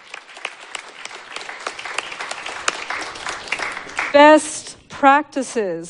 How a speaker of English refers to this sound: What I mean by reagent testing, yeah, can we have some applause for this? Woo!